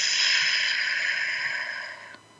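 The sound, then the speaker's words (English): A slow, steady exhale through pursed lips, as if through a straw, after a deep belly breath in a breathing exercise: a soft airy hiss that holds evenly for about two seconds before trailing off. No one speaks. “But those of you who are able to, sit back in your chair, take a deep belly breath, breathing in through your nose, expand the belly out through your mouth like through a straw.”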